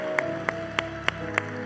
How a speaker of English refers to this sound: Come on, give a round of applause to those that made that decision. Great decisions. Welcome to the family.